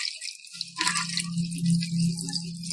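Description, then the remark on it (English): Liquid is poured back and forth between glasses to mix a drink from a main drink glass with orange juice: a steady, continuous splashing stream with a low ringing undertone, a brief clink near the start, and no one talking. “When you're at your tailgate, just pour it back and forth.”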